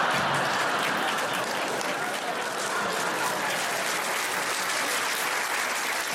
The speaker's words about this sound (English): Incredible that that would get a round of applause.